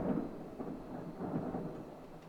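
A low, continuous rumble of thunder rolls on, swelling and fading slightly with a soft hiss of rain beneath it, fairly quiet and without any voices.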